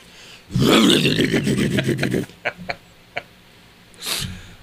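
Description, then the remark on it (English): A loud, raspy, harsh chainsaw cuts into wood for about a second and a half, then stops, leaving a few sharp clicks and a brief breathy rush. “I said a chainsaw? What's happening?”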